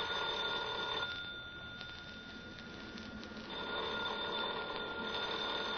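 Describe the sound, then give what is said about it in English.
A telephone rings with a steady electronic trill, two long bursts separated by a brief pause, clear with no one speaking over it. “Are you going to answer the phone?”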